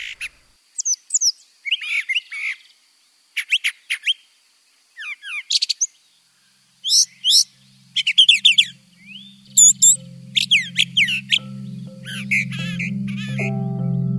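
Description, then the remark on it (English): A brown thrasher sings loud, varied phrases in quick bursts separated by short pauses, each phrase a different mix of whistles and harsh chirps, with a low hum rising in the background toward the end. “Listen to this guy, the brown thrasher. He has more than 1,000 song types and can even do covers of other bird songs.”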